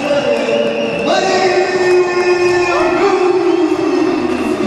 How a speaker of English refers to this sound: I think that was a bigger cheer here than maybe we anticipated for that.